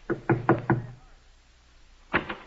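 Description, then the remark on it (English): Four firm knocks on a wooden door in a steady rhythm, a brief pause, then another quicker group of knocks, fairly loud with no voices. “Say, there's someone at the door.”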